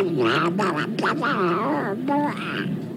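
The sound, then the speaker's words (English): A string of nasal, wavering duck quacks comes in quick succession, fairly loud, each call bending up and down in pitch with short gaps between them. “Talking of ducks and duck poo, I was at my young bloke's game this afternoon, a schoolboy football game.”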